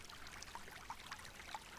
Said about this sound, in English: There's a pond up ahead. Stream looks like it flows into it.